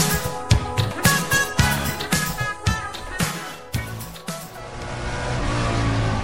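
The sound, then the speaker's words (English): A high-performance stock car racing engine revs in a series of loud, choppy bursts, then settles into a steady, sustained roar toward the end. “Air flowing through the system, mixing with fuel, combusting, bringing the speed and thrills of stock car racing to life.”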